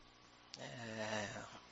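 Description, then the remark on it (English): A voice mimics a snore, imitating a prayer partner snoring on the other end of the phone: one drawn-out, rasping, throaty snort lasting about a second, fairly loud, after a brief quiet moment and a small click. “We just barely, you know, prayer partner waiting on the other end of the phone, snoring while we just skipping through the.”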